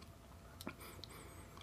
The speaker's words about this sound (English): Saturday night, I'm sipping on a little something-something. Got that good Bacardi, pineapple, and rocks. Straight, no chasing.